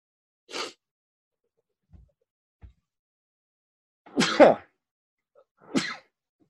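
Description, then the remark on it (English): A loud sneeze bursts out after a quick sharp intake and a couple of soft thumps, followed moments later by a second, slightly smaller sneeze. No one speaks. “I'm gonna sneeze.”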